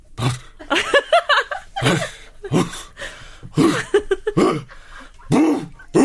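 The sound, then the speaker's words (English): A person's voice imitates a dog starting to bark with a cough: gruff, cough-like huffs building into a series of short, loud barks in quick, uneven succession. “What about when they begin to bark and they start with a cough?”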